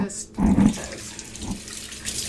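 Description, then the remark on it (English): Tap water runs steadily into a sink, splashing and shifting as a whitefish is rinsed under the stream, moderately loud, with a brief murmur of voices in the background. “Now, do you rinse it? I usually rinse it too.”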